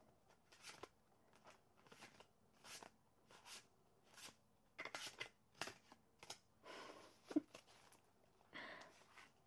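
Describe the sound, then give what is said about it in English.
Tarot cards being shuffled by hand in a loose, uneven way, like a child would, a series of soft papery swishes and slaps at irregular intervals, with no one speaking. “I'll just have to kind of shuffle them like a child would.”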